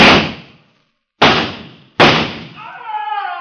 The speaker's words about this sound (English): I raised myself on my elbow and fired back.